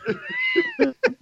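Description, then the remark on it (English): A cat lets out a drawn-out, rising-and-falling meow, followed by a couple of short chirpy mews, clear and fairly loud with no talking over it. “I thought she was going to agree with the cat.”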